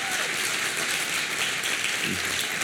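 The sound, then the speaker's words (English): A church audience applauds their pastor and leadership with dense, steady clapping that stays strong and continuous throughout, a broad wash of many hands with no voices standing out. “Can we clap for our pastor and our leadership here?”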